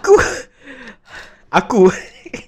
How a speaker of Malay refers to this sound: Aku okay. Aku ah sorry. Tarik nafas sekejap.